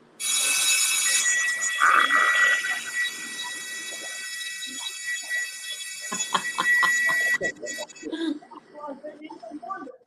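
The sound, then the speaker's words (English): A ship's crew drill alarm rings loud and shrill, a steady high-pitched bell sounding nonstop for about seven seconds before cutting off abruptly, followed by muffled voices and clatter. “Yep, there's the never fails crew thing. Drill.”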